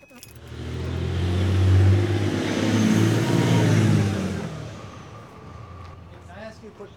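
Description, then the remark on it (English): A car drives downtown, its engine revving and rising in pitch as it accelerates, a loud rumble with road noise that swells over the first few seconds and then fades away. “So curious that I'm going to take a pause here, drive downtown, and ask people on the streets what they'd do.”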